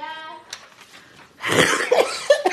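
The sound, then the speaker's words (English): A short voiced sound gives way to a burst of harsh coughing, several rough hacks in quick succession that are loud and raspy. “I'm coughing. I'm sorry, I didn't mean to cough on you.”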